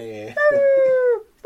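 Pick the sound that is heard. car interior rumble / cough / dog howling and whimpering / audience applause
dog howling and whimpering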